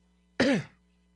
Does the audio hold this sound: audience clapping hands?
no